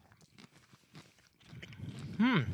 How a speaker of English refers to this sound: You know what that crunch? Because that is an unmistakable potato chip crunch.